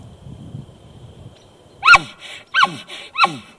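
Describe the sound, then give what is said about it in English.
After a quiet, low rumbling start, an elk lets out three loud, harsh grunts in quick succession, each a short breathy burst that drops in pitch, spaced about two-thirds of a second apart. “Okay, and then grunting.”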